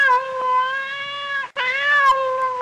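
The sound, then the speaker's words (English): Cats yowl and caterwaul in two long, drawn-out wails separated by a brief pause, loud with a whiny, wavering pitch and no talking. “Yeah, no, a couple of my, well, I don't want to say mine, because I think they're more community cats have walked into the bathroom. I don't know what exactly they're doing, but I don't like the sounds they're making.”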